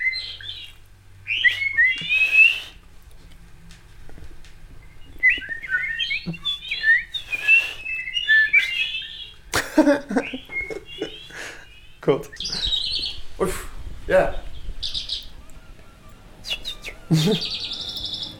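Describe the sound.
A person whistles a quick, warbling bird-like tune, imitating birdsong with rapid chirps and trills, while other voices briefly react with short remarks and laughter.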